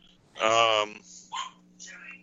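A dog gives one loud, drawn-out bark, followed by a couple of shorter, quieter yips, set against a low steady hum.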